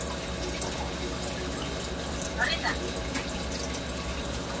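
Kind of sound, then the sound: nature, rain falling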